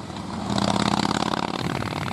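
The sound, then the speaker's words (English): A Harley Davidson motorcycle engine revs hard, its throaty, rumbling roar swelling in a loud burst before settling into a steady, rattling idle. No one speaks. “who needs a rev up? For Harley Heaven, the Harley Davidson Pan America is coming to Harley Heaven in Melbourne, Dandenong and Ringwood.”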